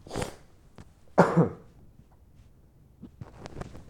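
Someone with a scratchy throat from allergies clears their throat in two harsh, raspy bursts about a second apart, the second louder, followed by quiet breathing and faint small clicks.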